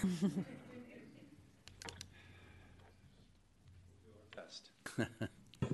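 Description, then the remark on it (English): Scattered, irregular clicks of someone typing on a computer keyboard during a commission meeting, soft, with a brief murmur of voice at the start and quiet hum between keystrokes. “So, forgive me, I was typing away on my computer over there.”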